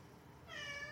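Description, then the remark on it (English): A cat named Frankie lets out a single drawn-out meow, fairly loud, starting about halfway through after a brief quiet moment and lasting to the end, with no one talking. “Yeah, he agrees. You see, people, the cat knows.”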